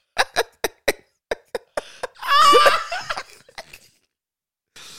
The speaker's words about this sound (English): I'm coughing on it.